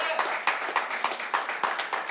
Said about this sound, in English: You can clap for that.